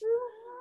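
A single short cat meow, fairly clear, with a steady tonal pitch that fades slightly at the end, and no talking over it.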